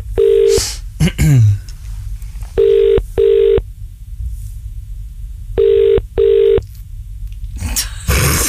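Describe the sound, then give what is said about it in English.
An outgoing phone call rings through the earpiece with the double-pulse ringback tone, two pairs of buzzy rings spaced a few seconds apart, over faint line hiss and soft background rustle. “He will answer his phone, I would imagine. Here we go. Right, it's ringing.”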